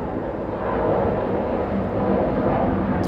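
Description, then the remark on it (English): A steady, broad roar of an airplane passing overhead, loud and sustained throughout with a slight swell in the middle, with no voices present. “we're kind of back from the plane flying”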